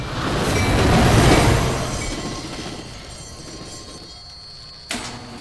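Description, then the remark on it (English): A mass transit train rumbles loudly, swelling then easing into a steady metallic hum with faint high squeals, followed by a sharp clank near the end. “Friends don't deserve mass transit.”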